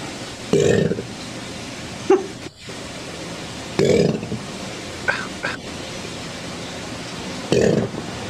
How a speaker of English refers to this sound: Is it burping? So these are in ambient air. No helium.